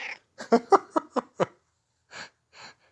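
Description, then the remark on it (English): A cat lets out a quick run of six short, chirpy meows, then, after a brief pause, two softer, breathier ones. No one speaks. “Kitty's saying happy Valentine's Day to y'all out there.”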